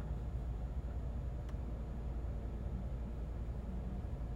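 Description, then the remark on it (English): A car makes a steady, low rumbling drone that holds constant from start to finish, fairly quiet and without voices, with one faint brief tick partway through. “That is my car making all that noise.”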